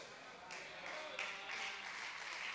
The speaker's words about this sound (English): Thank you for your three claps and your two amens.